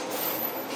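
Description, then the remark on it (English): A steady, loud roar of a passing SkyTrain at Edmonds station in Burnaby, on an almost 40-year-old system, with a thin, piercing metal-on-metal squeal of wheels on rails held high above the rumble, brief and continuous, with no voices. “It's the metal-on-metal sound that's bad.”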